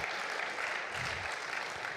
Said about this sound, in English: Can we applaud the living God for His word? His word. His word.